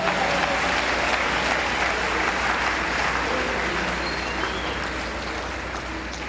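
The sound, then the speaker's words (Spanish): A crowd claps loudly and continuously, a strong round of applause for the Lord. It is a dense, steady wash of applause that stays strong for the whole stretch and eases only slightly toward the end, with no voices standing out. “¿Cuánto un aplauso fuerte al Señor?”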